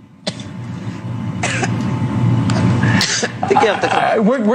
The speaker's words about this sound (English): She's coughing. Okay? She does a little thumbs up like to signify that she's okay out there, but she can't even say a word.